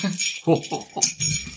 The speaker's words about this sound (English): I had to order that bell from eBay just for this. Brilliant. Yeah, because I was like, I want a bell.